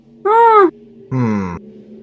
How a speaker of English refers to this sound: I mean, you do kind of hear a shriek, a loud roaring shriek on the other side, and then just kind of dead silence.